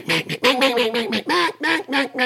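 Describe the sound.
A duck call blows a quick, rhythmic run of about seven loud, nasal hen-style quacks, with no talking over it, on a cold, breezy, sunny day during the duck migration.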